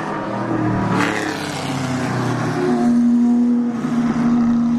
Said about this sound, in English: So, yeah, be prepared, boys and girls. You're going to be hearing a few more car noises.